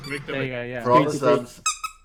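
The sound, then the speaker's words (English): A squeaky bee toy gives two short, high-pitched squeezes right after a person's voice stops, the squeaks fairly loud. “Why can't we just squeak the bee? Squeak the bee.”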